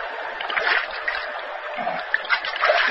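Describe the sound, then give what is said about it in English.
Water splashes and burbles along a small stream, a steady rush with a few sharper splashes breaking through; no voices. “Then, lying prone on the bank, sipped the cool water.”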